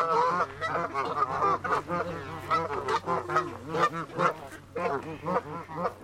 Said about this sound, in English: I'm just leading us through the geese. You just have to make piles of food, like, off to the side, and then you have to be confident about how you're walking. Yeah. And otherwise then they'll come for you.